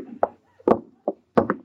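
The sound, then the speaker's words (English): Several hollow knocks on a wooden lifeboat, rapped in an uneven rhythm: a single knock, a pair close together, another single, then a quick final double. Fairly loud, no voices. “Lady, will you please stop knocking on those lifeboats?”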